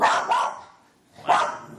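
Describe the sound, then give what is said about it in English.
A dog named Enzo barks three times, two quick barks close together, a short pause, then one more, clear with no one talking. “He never barks.”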